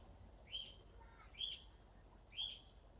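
A bird, a new pet parrot, gives three short, bright chirps spaced about a second apart, fairly soft against a quiet background with no talking.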